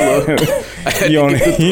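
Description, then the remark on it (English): A voice mimics coughing: a few harsh, rasping bursts mixed with strained, throaty vocal sounds, loud and continuous across the short stretch. “You go over there coughing.”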